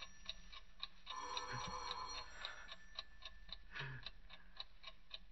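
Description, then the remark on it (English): A clock ticks steadily at seven minutes to three, with an alarm due to go off at three; crisp regular clicks at roughly two per second, with a faint tonal hum running underneath and no voices. “Tick-tock. 7 minutes to 3. In 7 minutes, the alarm goes off.”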